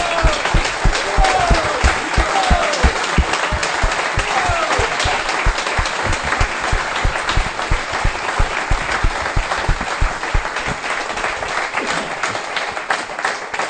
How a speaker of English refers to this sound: Could we give these guys a round of applause?